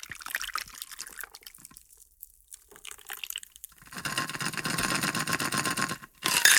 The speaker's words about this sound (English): Put all of this in your cocktail shaker, put the lid on it, give it a good shake. And now pour it into a rocks glass that's got some ice in it.